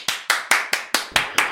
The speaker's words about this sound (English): Do we want to do some claps? Yep. Yes, we do need to do some claps, don't we?